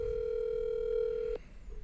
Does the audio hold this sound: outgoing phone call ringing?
yes